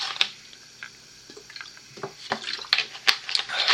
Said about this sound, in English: 1 second, water break.